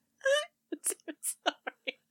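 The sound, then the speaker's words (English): A dog named Diggy snoring loudly: a drawn-out, whiny wheeze followed by six short, raspy snorts in a quick, uneven rhythm. Nobody speaks. “That's Diggy snoring.”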